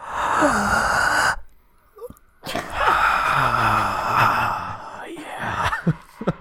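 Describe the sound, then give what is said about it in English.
Loud, exaggerated breathing into a microphone: long, heavy, airy inhales and exhales with a slight moaning tone, separated by a short pause, then a few quicker breaths at the end. “you have to take deep breaths.”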